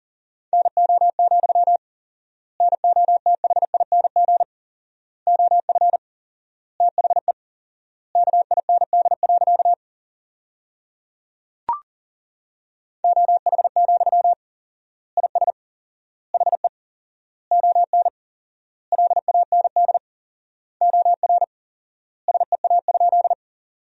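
Fast Morse code at 40 words per minute sent as a single steady mid-pitched tone, keyed in rapid bursts forming sentences from the top 500 words, with four-times word spacing leaving wide gaps between words, one sharp click partway through and no voices.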